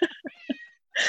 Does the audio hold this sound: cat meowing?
yes